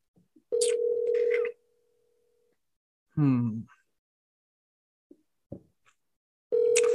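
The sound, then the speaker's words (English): A steady electronic phone ringing tone sounds twice, each about a second long with a pause between, with a brief burst of someone speaking in the gap and faint clicks. “It's indeed ringing.”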